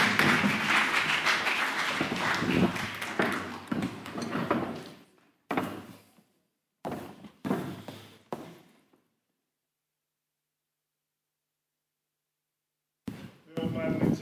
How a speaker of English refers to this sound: Yeah, come on, let's applaud them.